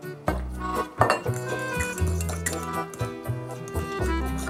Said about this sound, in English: This is white miso. It's a paste made from soybeans. Mm-hmm. And what we're gonna do is mix a little bit of this paste with some warm water.